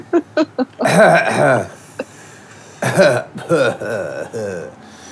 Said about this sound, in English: Jesus Christ. Cough.